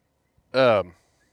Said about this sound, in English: I believe I heard a dog bark.